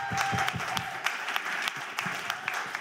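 A crowd applauds steadily, many hands clapping in a dense, bright patter with sharper individual claps standing out, sustained at a moderate level without talking.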